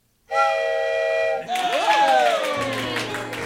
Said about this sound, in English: Here, have this souvenir piece of wood make sound like a train whistle.